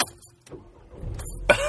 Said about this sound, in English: Starting the car for the first time. You ready? Silence, please.